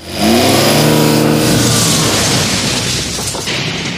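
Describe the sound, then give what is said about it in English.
An Econoline van engine revs hard, its pitch sweeping upward before settling into a loud, sustained roar of speed, with no voices present, as the van drives into the Channel Breeze parking lot in thick fog without slowing down. “RJ entered the Channel Breeze parking lot, and he did not slow down.”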